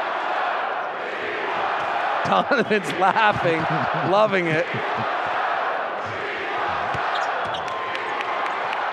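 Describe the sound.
A loud arena crowd at a late-night basketball game roars and chants "We want Joe" for Joe Ingles steadily throughout, a dense wash of voices, while a commentator speaks briefly over it in the middle.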